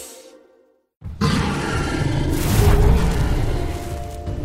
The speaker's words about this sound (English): Hey, was that a dragon I just heard? No, I just left the TV on with How to Train Your Dragon playing.